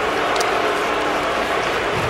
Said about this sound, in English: And that is Johnson, and that is the Boo Birds, the first of the day from the Soldier Field crowd.